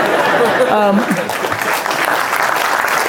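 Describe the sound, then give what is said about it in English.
An audience breaks into steady applause for the younger people in the room, a dense wash of many hands clapping at once, with a brief voice rising over it near the start before the clapping carries on evenly. “Let's clap it up for some of the youngsters in here.”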